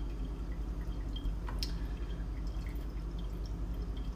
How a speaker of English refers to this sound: Anyway, I'm meal prepping, so if you hear water and other things, that's what you're hearing. It's like a cooking show.